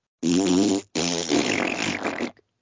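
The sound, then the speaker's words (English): Two loud fart sound effects in a row, made by the comedy superhero Farting Butthole Man: a short buzzing blast, then a longer, raspier sputtering one that trails off, with no talking over them. “Oh, thank you, farting butthole man, for saving my tree-climbing baby, my hero.”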